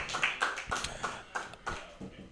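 Light, scattered applause from a small audience: a handful of sharp, irregular claps in uneven bursts, fairly quiet and fading out within a couple of seconds.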